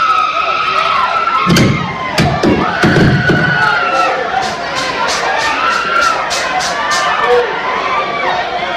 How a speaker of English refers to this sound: those multiple thumps that you heard, that was … slam dunking the mic down on the stage